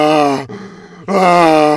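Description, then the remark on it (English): A person's voice imitates a turtle's groaning: two loud, drawn-out, buzzy groans with a steady mid pitch, separated by a brief breathy pause, with no other talking. “I make that noise when I'm walking back from the fridge to my room.”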